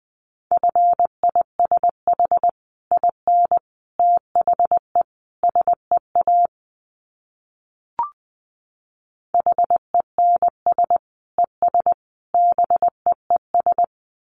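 A steady mid-pitched Morse code tone keys out brisk dots and dashes at about 20 words per minute, pausing for a few seconds around a single short click before the sending resumes.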